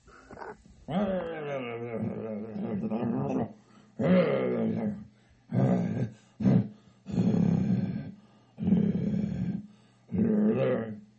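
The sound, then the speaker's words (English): A dog snores loudly in a steady rhythm, about seven long, rough, rumbling breaths separated by short pauses, with no voices over it. “Snoring. I know, he's very loud.”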